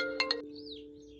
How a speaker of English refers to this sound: I'm sorry. I really hate it when people call my phone. I'm really sorry.